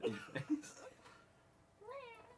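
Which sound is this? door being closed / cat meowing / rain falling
cat meowing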